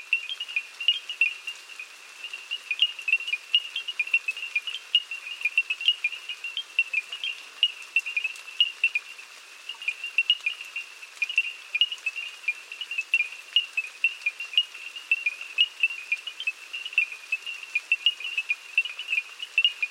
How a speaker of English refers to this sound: We leave you this week at the banks of the Danube, near the village of Crisan in Romania, whose residents are serenaded each night by crickets and frogs. Bernard Fort recorded this chorus.